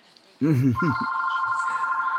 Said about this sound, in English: Oh, my God. My phone will not stop ringing tonight.